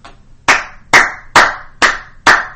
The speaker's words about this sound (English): I have a really good clap. Not to pat myself on the back or anything, but I have a solid clap.